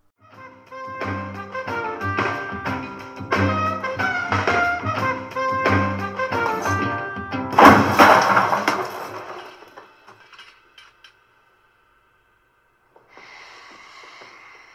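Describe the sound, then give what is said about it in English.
A band plays steadily until a sudden loud crash cuts through as a chair is hurled and slams into a wall, followed by a scattered clatter that dies into silence. “Why do you suppose I just hurled a chair at your head”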